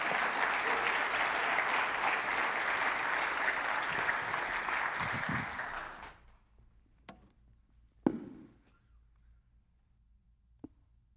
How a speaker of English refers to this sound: Can we clap